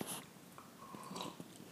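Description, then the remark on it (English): A quiet sip of pour-over coffee: a brief airy slurp at the start, then small mouth clicks and a soft swallow, with no talking. “A little sip break.”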